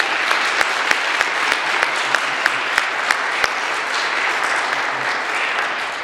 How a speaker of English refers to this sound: So one more round of applause